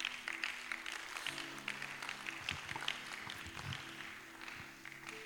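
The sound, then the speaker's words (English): An audience claps for Jesus together in a steady, dense wash of applause lasting several seconds, with a faint low hum of music or voices underneath. “Clap for Jesus.”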